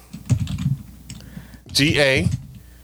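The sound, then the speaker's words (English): A few quick keystrokes clatter on a computer keyboard as someone types the word ganache into a Google search, irregularly spaced, followed by a short burst of a voice speaking over low room noise. “Say out each letter as you're typing it.”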